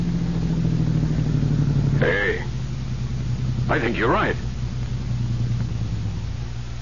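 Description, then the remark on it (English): A steady car engine hums throughout, droning low and even, then easing off slightly as the vehicle slows on a road, with a man speaking briefly over it. “Come on now, Sweeney, slow down, will you?”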